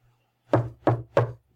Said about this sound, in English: All right, I'm gonna knock now. Okay.